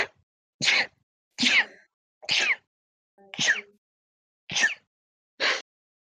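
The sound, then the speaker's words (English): A run of seven loud, sharp sneezes in quick succession, evenly spaced with brief silence between each, with no talking. “It's not COVID. You don't sneeze with COVID.”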